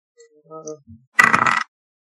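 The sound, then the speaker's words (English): A few soft tonal blips, then a short, dense clatter of two ten-sided damage dice rolling across a table for about half a second, moderately loud, with no talking. “A little bit of rolling out.”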